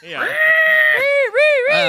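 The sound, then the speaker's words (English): A voice imitates the screech of Man Bat feasting on the Penguin: a loud, sustained, strained shriek followed by wavering, warbling cries that dip and rise in pitch, bleat-like and harsh, lasting about two seconds. “Sharp antenna, Man Bat comes down and just starts feasting, screeching.”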